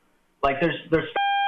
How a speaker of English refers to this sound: Wait, I just heard a beep.